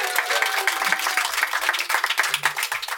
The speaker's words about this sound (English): And we're, of course, joined by our wonderful audience here in a tent where it's not raining in Wales. Miracles. The people at the Green Man Festival, give yourselves a big round of applause.